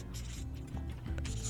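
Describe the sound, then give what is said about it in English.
Faint, scratchy pen strokes on paper as people write down music artists' names during a 30-second game, in short irregular bursts of soft rasping over a steady low hum, with no one talking. “And I like you guys are already writing.”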